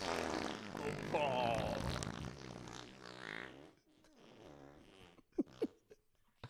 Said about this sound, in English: I'll be the first to say it. That was incredible. That was really good. That was an incredible. Oh my God, you are literally skinnier than you were before that fart.